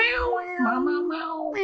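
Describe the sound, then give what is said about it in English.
Miller the cat lets out a single long, drawn-out meow, its pitch sliding down and then holding steady before rising at the end, fairly loud and with no talking over it. “But if the door is open, are we going to hear Miller meowing? Yes, unfortunately.”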